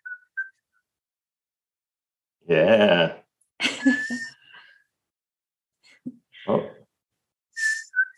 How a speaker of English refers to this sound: And funny enough, she actually, when I whistle like a dog to a dog, she comes running because she gets used. She knows my whistle. So yeah, what's your whistle like? Can we hear it?